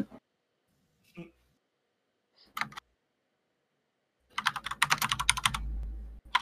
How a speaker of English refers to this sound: Sorry, my typing is loud.